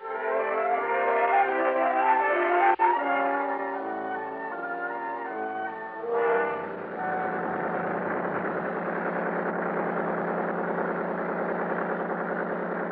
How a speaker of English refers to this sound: Big 35 on Buster's boat pulled us up the lake at an easy 30 knots. The day was clear, the weather warm.